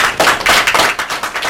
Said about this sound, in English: Jeep Patriot. You know what? I'm going to clap.